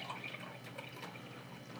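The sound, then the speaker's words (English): A drink is poured and foams, giving a steady, quiet fizzing hiss sprinkled with tiny crackling pops and drips, with no voices over it. “Oh, these ones are foaming. They're foaming hard.”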